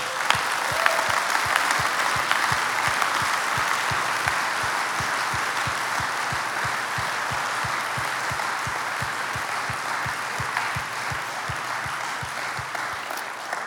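An audience applauds steadily for over ten seconds, a dense, even wash of clapping with some sharper rhythmic claps standing out in a regular beat, no voices heard.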